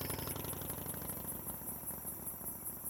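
A motorcycle engine starts up and takes off, rumbling with a rapid, rough, pulsing throb, holding a steady loudness throughout with no voices present.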